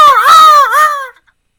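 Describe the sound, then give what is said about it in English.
A loud, high-pitched voice imitates a seagull call: one wailing cry of about a second that swoops up, dips, then rises again before cutting off, with no talking around it. “I don't do the bird as well as you do.”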